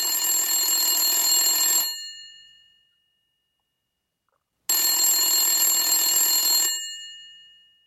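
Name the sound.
telephone bell ringing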